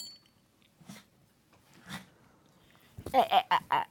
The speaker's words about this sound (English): Oh, I'll totally edit this whole thing. The whole dog barking.